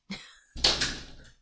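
A light knock, then a heavy, rattling thud as someone bumps into a sliding glass door, the impact ringing briefly before fading. It is fairly loud, with no talking.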